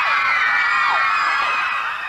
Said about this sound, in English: So hundreds of screaming fans braved the cold for one last glimpse of their favourite band. And when the limo swept into view, the crowd erupted.